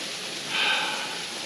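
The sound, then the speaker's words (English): A steady, soft rush of flowing water like a creek, with a gentle swell in the middle of the short stretch and no voices. “Thank you for joining me down at the creek today.”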